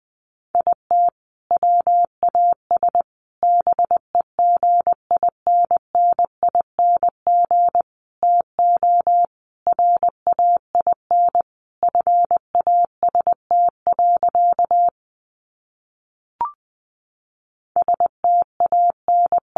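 Morse code practice sentences from the top 800 words, sent at about 20 words per minute: a single steady mid-pitched tone keyed in quick dots and dashes, with one longer gap near the end before the beeping resumes.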